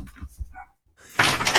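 A dog lets out a sharp, loud bark near the end, preceded by a few soft, low thuds and a brief quiet pause. No one speaks.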